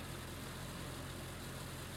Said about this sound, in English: And you guys will hear a car approach, and eventually the bright lights of headlights will illuminate all of you.